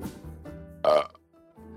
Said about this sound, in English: Now, for those of you who speak fluent Korean, that is obviously a high-quality burp.